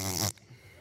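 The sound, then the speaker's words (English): A short, loud mouth-made fart noise for the house on the sand falling in a children's song: a buzzy, spluttering raspberry lasting about a third of a second, cutting off abruptly into faint low murmuring. “Oh, we get to make a fart noise.”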